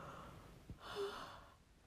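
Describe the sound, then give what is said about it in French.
A single long, breathy yawn, fairly quiet, with a drawn-in rush of air and a brief voiced note in the middle before it fades out. “Attendez, je vais bâiller un grand coup.”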